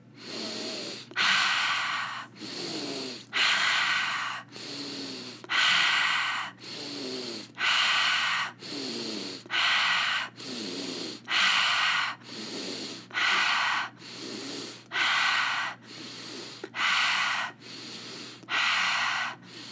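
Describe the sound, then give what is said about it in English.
Steady cycles of loud, breathy, deep inhales and exhales into the belly and chest, about fourteen in a row, with short gaps between them and no talking. “Breathing all the way into your belly, into your chest, filling all the way up and out.”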